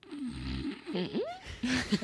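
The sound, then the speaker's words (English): A voice imitates a snore: a low, rattling buzz followed by warbling, sliding snorts that swoop up and down in pitch, ending in a couple of short gurgling bursts. “What kind of snore was that?”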